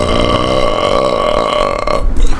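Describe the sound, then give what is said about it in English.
A long, loud, rumbling burp drones steadily for about two seconds with a low, buzzing pitch, then breaks off into a rougher gurgle at the end. “It's a bubbling. It burns because you're evil.”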